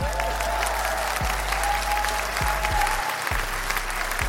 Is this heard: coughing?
no